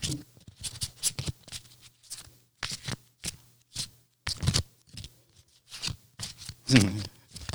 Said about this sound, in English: I'm gonna shuffle these cards first. I haven't had these out for a while. Oh, listen, that's one of them satisfying sounds that my daughter listens to